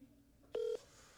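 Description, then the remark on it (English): A single short electronic telephone tone from a phone call that goes unanswered, a steady mid-pitched beep lasting about a fifth of a second, sounds loudly over a low, quiet background hum, with no one speaking. “If Eric didn't pick up the call, I think you probably have to call your mom.”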